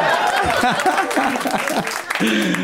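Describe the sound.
A comedy audience applauds loudly and steadily for the whole stretch in an applause break during a stand-up set, a dense rush of clapping with scattered cheers and voices rising through it, and a voice breaks in briefly near the end.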